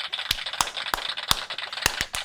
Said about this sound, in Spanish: Hasta yo misma me aplaudo aquí. Un aplauso, tú misma no tienes que ayudar.